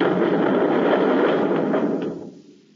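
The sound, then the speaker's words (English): A loud, roaring blast of attacking craft's nose rockets tearing into a plant, a dense wash of rumbling noise that holds steady for about two seconds before fading out. No voices are heard. “Well, they're tearing up a whole hunk of the plant with their nose rockets. They'll keep blasting away till they're sure we're finished.”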